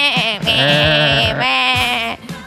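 A goat bleats loudly in two long, quavering cries, the second following almost immediately after the first, with no voices alongside.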